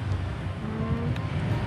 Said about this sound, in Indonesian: Ini mohon maaf ya sebelumnya banyak noise suara motor karena kita sedang di gak dekat jalan ini. Di pinggir gak jalan, di trotoar.